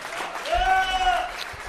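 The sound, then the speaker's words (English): A short burst of audience applause with a steady clapping wash, a sustained whistle or cheer riding over it, moderately loud. “How about another round of applause for Sean Hatton?”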